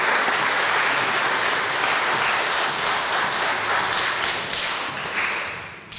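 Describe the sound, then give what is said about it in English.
Sustained applause from an audience for all the participants of a program, a dense, steady wash of many hands clapping at even loudness for several seconds before easing off slightly at the end, with no voices over it. “So first of all, I'd like to ask for a round of applause for all our participants.”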